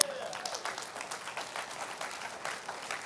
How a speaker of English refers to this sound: And those of you who are online right now, you can tell that I'm telling the truth because you heard the applause. That was not a laugh track. That there are actual people here right now.